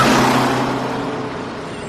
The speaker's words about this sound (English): So how do we actually want to address bullying other than just running over the bully with a bus?